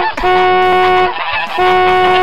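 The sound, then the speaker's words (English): A goose honks loudly, two long, harsh, nasal blasts with a short break between them and no other sounds, as it attacks a car. “But when we pulled to the scene of the crime, the goose, that bad, bad son of a bitch, started attacking the car.”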